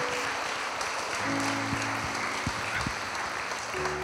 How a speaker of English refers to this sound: Come on, let's give him a hand clap of praise in this house.